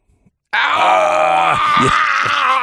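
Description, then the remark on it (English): A loud, drawn-out pained groan begins after a brief silence, a strained low voice holding for about two seconds with wavering, breaking pitch toward the end. “Now, tell me without using words that you live in pain in your life.”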